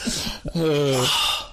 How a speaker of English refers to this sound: I got you farts on deck. You don't just have two farts on deck. You've got an arsenal. Are those all your own? An arsenal.